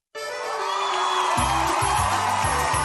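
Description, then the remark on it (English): A big crowd at a game roars and cheers loudly after a brief silence, a dense, continuous wall of voices with a low, pulsing rhythm joining underneath partway through. “Hear the roar of the crowd, or is that the roar of your stomach?”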